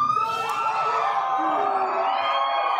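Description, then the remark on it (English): A crowd of thousands in Hall H cheers and whoops in a steady, loud roar, many voices rising and falling together over continuous applause with no pause, as Johnny Depp comes out as Grindelwald. “Of course, when he comes out, there's a lot of applause.”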